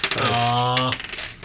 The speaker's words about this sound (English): Let's roll for coins. Let me know if you get a 6, because I want a misfortune token.